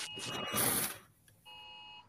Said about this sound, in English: Oh, I do hear a sound. They're an Amber Alert or something? No, that's a thunderstorm alert.